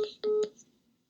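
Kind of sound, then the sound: signal or alarm, telephone ringing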